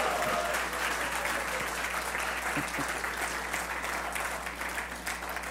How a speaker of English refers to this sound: So I'm going to remind you how exciting it is that we are about to open the words of God, and you get to hear from your senior pastor. Everybody, let's get excited about that with a big round of applause.